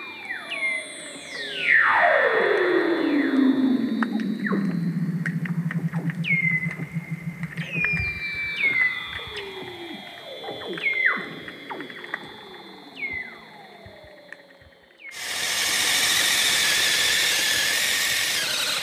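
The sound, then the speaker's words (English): Weddell seals calling underwater: a long eerie whistle glides from high to low into a buzzing trill, followed by repeated descending chirps and clicks, then a steady hiss takes over at the end. “The otherworldly song of Weddell seals”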